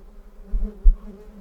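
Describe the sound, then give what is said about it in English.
A dense, low droning buzz of a black swarm of flies fills the air continuously, with a couple of louder swells as insects pass by; no voices are present. “All about the place where she lay was the thick buzzing of flies, and the black swarming of them.”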